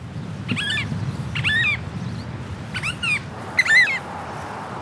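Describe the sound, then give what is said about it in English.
An oystercatcher next to a road in New Zealand calls in four loud, shrill bursts of rapid piping, each a quick run of sharp notes, over a steady low rumble of outdoor background noise. “It's a beautiful oyster catcher just next to the road.”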